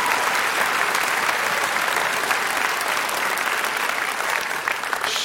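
An audience bursts into steady, sustained applause, many hands clapping in a dense, even wash of sound that holds at a constant loudness throughout, with no voices rising above it.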